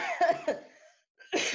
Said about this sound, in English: Oh, sorry for coughing. Sorry. Yeah. I'm so sorry.